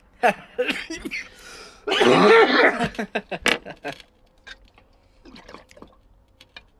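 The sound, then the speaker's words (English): Water gurgles and bubbles loudly through a new bong filled with too much water in a roughly one-second burst, surrounded by short lighter clicks and rattles, then quieter scattered pops and a faint throaty sound. “I put too much water in here also.”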